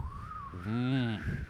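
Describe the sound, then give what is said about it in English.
A voice imitates the breeze passing through a thigh gap while walking, with a thin, steady whistle held for about a second and a half, broken midway by a short, harsh, throaty vocal sound, fairly loud. “whistling whilst you walk? Yes.”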